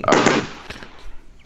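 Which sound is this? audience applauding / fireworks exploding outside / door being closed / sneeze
fireworks exploding outside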